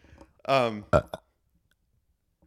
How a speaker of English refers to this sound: Thanks for burping into the microphone during my take, though. That's fine.